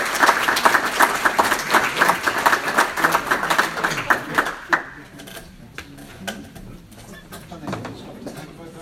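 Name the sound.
audience round of applause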